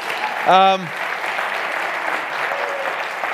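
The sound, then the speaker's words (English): An audience claps steadily throughout for Teen Challenge, a dense, even patter of many hands, with one brief voiced whoop rising out of the applause near the start. “If we give them another round of applause.”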